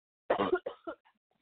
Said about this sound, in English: I am dying a little, so please excuse the coughing.